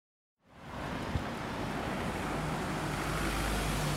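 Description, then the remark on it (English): A steady, dense roar of street traffic, heard from a traffic island outside a studio where a bike is being locked up, sets in after a brief silence, with low rumbling engines and a faint low hum emerging later, continuous throughout. “I'm just locking up my bike on the traffic island outside the studio”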